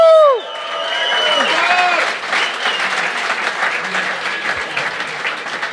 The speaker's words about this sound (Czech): Já uvidím, jak budete tleskat po zítřku takhle.